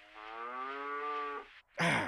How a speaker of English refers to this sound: A cow says...